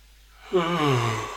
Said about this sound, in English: yawn for emphasis, because the puppy, I think he just gets referred to as the dog now, progressively started deciding that the true answer to life is to get up half an hour earlier every single day.